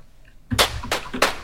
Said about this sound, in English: That's someone slapping their thigh. That's incredible. That's one. Well, it is called body percussion, okay? Thigh slap.